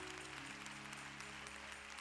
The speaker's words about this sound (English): let's give him a rousing applause.